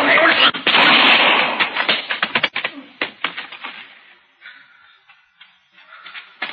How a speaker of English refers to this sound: The rifle went off when I knocked it aside, that's all.